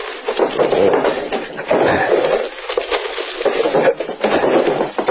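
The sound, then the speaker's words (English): Wooden drawers of a chest are pulled open one after another while a room is being searched, a steady run of loud scraping, rubbing and rattling wood with brief pauses between pulls, and no voices. “I'll open some of the drawers in this chest.”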